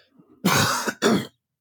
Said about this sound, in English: I'm gonna have to cough again, I feel like.